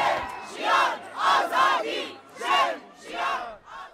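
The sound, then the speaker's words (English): A protest crowd in Iran shouts slogans such as "death to the dictator" together in loud, rhythmic bursts of many voices. Each chanted phrase swells and drops in quick succession, repeating throughout. “Crowds of brave Iranian women have been seen removing their hijabs and throwing them into fires, cutting their hair, and shouting death to the dictator.”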